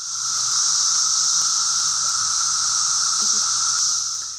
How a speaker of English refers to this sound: Male cicadas instinctively know how to use this specialized muscle to bend and buckle the heavily ribbed membranes of the timbal in a unique way to produce the exceptionally loud, ear-piercing even, shriek or scream that is unique to the cicada.